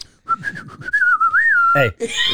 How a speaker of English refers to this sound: You're a whistling motherfucker.